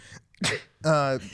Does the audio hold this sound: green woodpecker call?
no